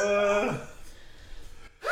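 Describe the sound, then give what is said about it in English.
A single loud sneeze bursts out at the start, with a voiced cry that drops sharply in pitch, followed by quiet background noise and a short breath at the end. “Bless you.”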